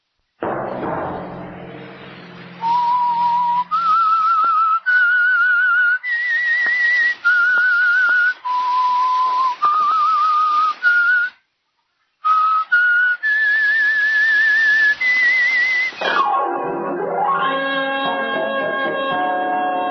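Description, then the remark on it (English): A whistled theme melody for The Whistler radio program, with clear, sustained notes stepping up and down in a slow tune and a short break midway, before giving way to a swelling musical sting at the end. “At 9 o'clock, the Whistler will bring you another strange tale.”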